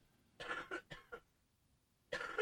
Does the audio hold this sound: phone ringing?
no